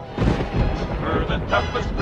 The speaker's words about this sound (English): People say the sound of thunder that sometimes carries over the dry land around the Pecos River is nothing more than Pecos Bill's family laughing up a storm.